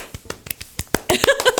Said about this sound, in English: Let's do a round of applause for that.